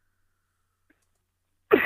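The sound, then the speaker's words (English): After near silence, a single loud cough from a person getting over a cold bursts out abruptly at the very end, harsh and breathy, and is cut off mid-sound. “I'll cough once in a while so you can block it out, I hope.”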